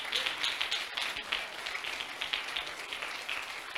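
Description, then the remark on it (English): Many hands clap together in a dense, continuous burst of applause as people stand and clap their hands to the Lord, bright and steady throughout, with a few sharper claps standing out from the crowd. “Stand to your feet and clap your hands to the Lord.”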